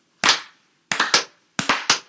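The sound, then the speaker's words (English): People clap to welcome a special guest in at the start of a recording. Sharp hand claps with no talking: a single clap, then a quick burst of three, then another group of three, each crisp and loud with a brief ringing tail. “Wait, this we have to clap you in again?”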